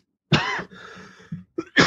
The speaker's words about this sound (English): Excuse me. I should have muted that. I've muted most of these, but there's going to be some coughs coming through.